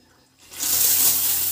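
household object, running water

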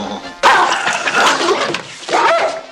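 animal, dog barking and attacking

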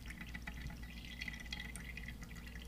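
household object, water dripping

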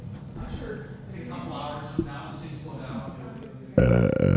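human body sound, burp into the microphone

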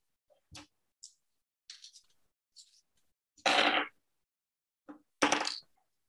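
dice being rolled

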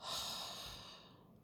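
human body sound, deep breath in nose

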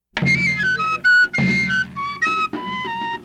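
sound effect, whistling

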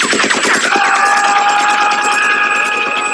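sound effect, gunshots

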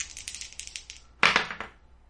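household object, dice being rolled

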